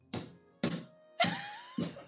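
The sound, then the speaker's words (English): Four solid knocks by hand on a real wooden table, evenly spaced about half a second apart, each a dull thud with a short ringing decay, fairly loud, with no voices. “That's actual wood.”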